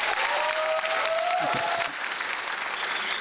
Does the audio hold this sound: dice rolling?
no